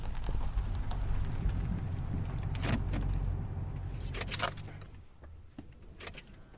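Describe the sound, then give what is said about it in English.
A truck drives along a bumpy dirt road up to a metal gate, its low engine rumble steady beneath sharp rattles and clunks as it bounces over bumps and potholes, with the rumble thinning out toward the end. “bouncing over a bump or pothole is a different sound clip that I added as a separate track, just to bring some variety and realism to the drive up to the metal gate.”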